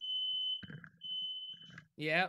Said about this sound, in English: Yep. That's at your house. Everything okay? You cool? Fire alarm going off. It's not here.